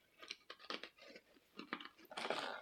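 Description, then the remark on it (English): Crisp chewing of crunchy, sugar-free meringue cookies with no soft center, a series of brittle crunches in an uneven rhythm, growing denser toward the end, with no talking. “These ones don't have the soft in the center. They're just crunchy.”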